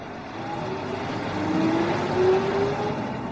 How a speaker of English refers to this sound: The train accelerates away from the station. You lean forward. You lean into it. It rattles along, and you ride it, shifting the muscles in your feet to adjust to the uneven swaying.